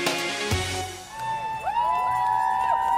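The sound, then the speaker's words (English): A crowd at an outdoor rally in Frank Ogawa Plaza, Oakland, on a hot and sunny September day, holding up transgender flags, cheers and whoops steadily, with rising and falling shouts or whistles above a dense roar of voices and a sharp thump early on. “It's a hot and sunny September day in Oakland as a crowd gathers around Frank Ogawa Plaza.”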